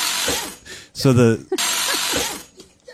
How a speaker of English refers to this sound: So the drill goes back into his nuts. Oh wow. The spring doesn't actually go into his, it's the drill.